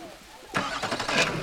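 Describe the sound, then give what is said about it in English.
After a brief quiet moment, a car engine cranks with a few rapid pulsing turns and starts, moderately loud, as people get back into cars to continue climbing a rough road. “We pile back into the cars and continue climbing the rough road until we stop and everyone gets out of the cars again.”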